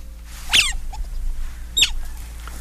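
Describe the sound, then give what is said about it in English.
An egg-hatching sound effect: two short, high-pitched squeaky peeps about a second apart, with faint scratchy crackling in between and a low steady hum underneath. No one speaks. “Wait, I hear hatching sounds.”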